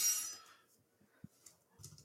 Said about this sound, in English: What was that? Did someone throw something through a glass? It sounded like it. Yeah. What the heck happened? Maybe it was at my mic house. Drop with a glass.